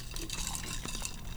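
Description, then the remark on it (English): A shaken cocktail made with Jack Honey is poured steadily into a glass, a continuous splashing trickle with faint clinks of ice, lasting just over a second with no voices. “Y para acabar, lo pones en, y pour it out en tu vaso.”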